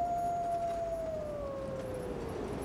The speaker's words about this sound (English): The howling of wolves was growing less. Presently, it ceased altogether.